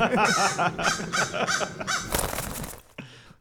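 birds cawing

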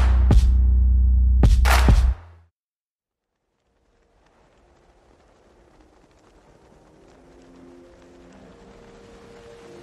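car engine revving

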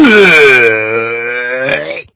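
burp

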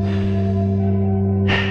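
deep breathing exercise

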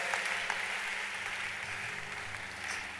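audience clapping

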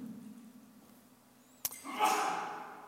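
sneeze

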